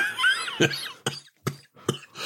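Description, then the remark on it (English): A fit of harsh coughs brought on by laughing, four or five sharp bursts in a rough, uneven rhythm, fairly loud. A brief squeaky, strained vocal sound comes just before the first cough. “You laughed me into a coughing fit there.”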